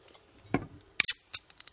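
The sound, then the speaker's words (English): A beer can is cracked open, with a dull click of the tab, then a loud, short fizzing hiss, followed by a few faint ticks. No one speaks. “I just got beer on the microphone a little bit.”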